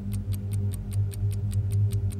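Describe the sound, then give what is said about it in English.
An alarm clock hidden in the north wing of a building in Bath, Michigan ticks steadily and quickly, about five crisp ticks per second, clear over a low, constant hum, with no voices. “hidden away in the north wing is an alarm clock ticking away.”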